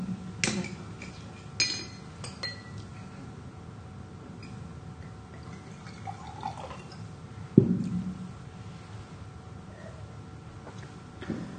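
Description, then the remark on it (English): Water poured into a glass by a speaker pausing during a talk, with a few sharp clinks of glass and a brief faint trickle, no one speaking. “Maybe I'll just get some water, sorry.”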